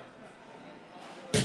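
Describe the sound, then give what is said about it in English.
A hammer slaps down on a bar once, a sharp, loud bang near the end that follows a stretch of quiet background murmur. “I'm gonna slap my hammer on a bar.”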